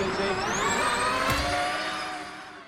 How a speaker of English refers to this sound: Formula E is far quieter than Formula One because you don't have the noise of the petrol engine. But if you ask anyone who's actually been to a race, they are much louder than most people think.